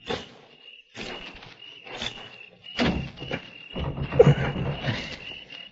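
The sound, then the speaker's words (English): A bolted door is rattled and shoved several times as someone tries to open it, in quick, uneven bursts of thumping and clattering, while a steady high cricket chirp carries on in the background. “I'm going to try the door.”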